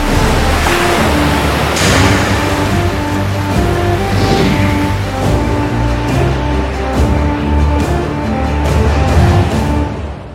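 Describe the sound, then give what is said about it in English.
Ocean waves and surf rush in a steady, loud wash that fills the whole stretch, with faint sustained low tones humming underneath and no voices. “Quite literally, because it's tides and water and things like this.”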